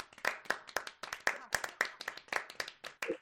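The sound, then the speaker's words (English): A short burst of applause sound effect: crisp, sharp hand claps in a quick, fairly steady rhythm, roughly a dozen over about three seconds, with no one talking. “Okay, we need the long applause one for that.”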